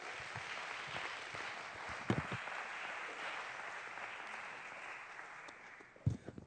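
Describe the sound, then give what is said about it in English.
A church audience claps its hands to the Lord during a sermon, a dense wash of many hands applauding together, holding fairly even before tapering slightly, with a couple of sharper louder claps standing out near the end. “If you're thankful for Calvary, would you just clap your hands unto the Lord right now?”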